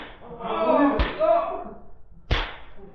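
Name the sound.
whip lashing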